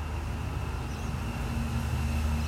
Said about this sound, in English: You hear that? That's traffic.